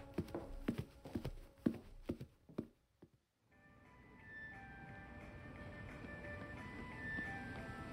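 Heavy footsteps stomp through an inch of fresh snow in a quick, uneven run of thuds for about three seconds, walking from a school's main building to the cafeteria, then a brief hush before cheerful Christmas music starts playing.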